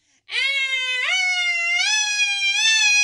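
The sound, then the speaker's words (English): A person's voice imitates an old-fashioned fire siren: one loud, sustained tone that rises in pitch in steps and holds high and steady for about three seconds, with no talking over it. “That is like an old-timey siren. That's my fire siren.”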